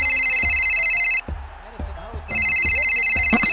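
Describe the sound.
A husband's mobile phone rings with a steady, high electronic tone in two loud bursts separated by a brief pause, over background voices and low rhythmic thumps.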